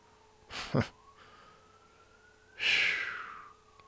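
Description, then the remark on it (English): A faint siren wails steadily underneath, its tone gliding slowly upward in pitch, while two louder breathy bursts of noise break in, one early and one late. No one speaks. “Alarm is going off. You hear them?”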